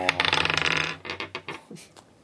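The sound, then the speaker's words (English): Dice clatter across a hard table in a quick burst of rapid clicks, then a few separate clacks as they bounce and settle, coming up a total of 12. Fairly loud, with no voices. “And that is a 12. Great dice.”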